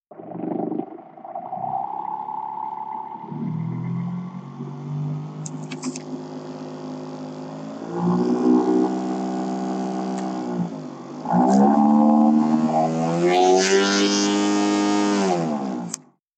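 A sex toy with interchangeable attachments roars steadily with a rich, harmonic whine, its pitch sliding and shifting as it changes speed, growing louder in stages before cutting off abruptly.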